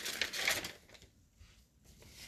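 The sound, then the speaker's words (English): Paper rustles in a dense, crinkly burst as sheets are shuffled while someone looks for their paper, then quieter scattered handling noises follow, with no talking. “Let me find my paper.”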